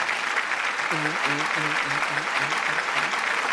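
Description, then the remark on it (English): An audience claps steadily when asked if they saw the Grammy Awards, a dense, even wash of applause for the full few seconds, with a run of short, rhythmic voiced whoops or calls rising over it partway through. “Clap if you saw it.”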